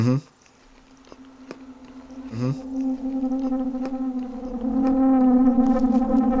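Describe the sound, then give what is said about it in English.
A steady, low-pitched whistle of nose breathing hums on without a break, punctuated by two short breathy bursts, and grows louder and richer toward the end. No one talks. “My nose whistles when I breathe.”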